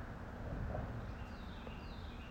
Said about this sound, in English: Instead, I'm in my backyard and listening to the birds. Chirpy, chirp, chirp.